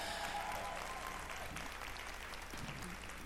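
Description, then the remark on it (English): An audience at a Celebration Sisterhood inspirational teaching claps steadily to greet the online audience, with dense, continuous applause that stays at an even level throughout, with faint scattered voices and cheers mixed in. “Give them a big clap and a hello.”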